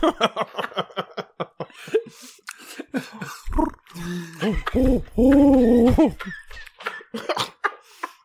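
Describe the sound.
A person imitates a pigeon, starting with quick rhythmic throaty clucks, then breaking into low, wavering coos that swell and warble, fairly loud, with bursts of laughter around it.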